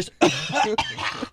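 A harsh, raspy cough bursts out close to the mic, rough and throaty, with a brief second rasp trailing after it before things go quiet.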